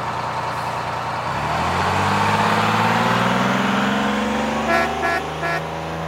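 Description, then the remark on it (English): A yellow school bus engine rumbles steadily and rises in pitch as it pulls away and accelerates through a town, with a few short beeping horn toots near the end. “This week, hop aboard a yellow school bus as it makes its way through the town and learns about planes, trains, and cars.”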